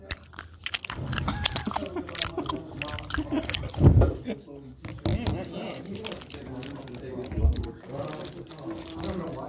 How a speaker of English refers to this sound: Guys, listen. Listen to me eat my Bradley Boy. This is me eating my Bradley Boy. It's very healthy for you, and it keeps me going during the day.